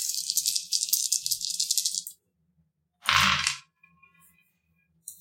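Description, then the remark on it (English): Six-sided dice (d6s, the kind used in Monopoly) rattle rapidly for about two seconds, then clatter out in a short, loud burst with a low knock, followed by a few faint ticks as they settle, landing three 6s and a 3. No one speaks. “Here's some d6s. It's the ones you use in Monopoly.”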